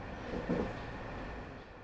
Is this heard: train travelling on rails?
yes